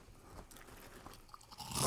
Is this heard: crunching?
yes